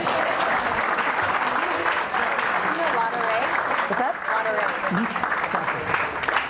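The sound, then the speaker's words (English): An audience claps steadily for several seconds, a dense, even wash of applause at constant loudness, with faint voices calling out beneath it. “Let's clap it up for him.”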